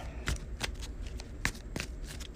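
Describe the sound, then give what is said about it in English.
A deck of cards being shuffled during a card game, a quick burst of crisp riffling with several sharp snaps and flicks over a couple of seconds, no voices. “A quick shuffle here.”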